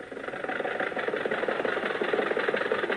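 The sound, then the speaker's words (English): A car engine idles steadily at a crowded drive-in theater, a continuous mid-pitched rumble with a faint rhythmic pulsing, holding an even loudness throughout with no voices. “Well, why don't you follow that car in front of you?”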